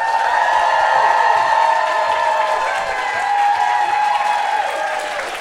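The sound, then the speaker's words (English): A crowd claps loudly and steadily throughout as a guest is welcomed to the stage, with cheers and whoops rising above the dense clapping before it eases slightly near the end. “Please, huge round of applause.”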